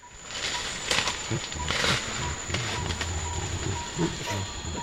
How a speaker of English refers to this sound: Yeah. That's a bit less convincing, isn't it? That's a Western lowland gorilla in the Republic of Congo singing. Gorillas apparently sing, and they do vary their songs, that if you call that a song, and they sing differently.